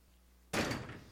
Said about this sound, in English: Come up and shut the door.